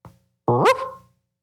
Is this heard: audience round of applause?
no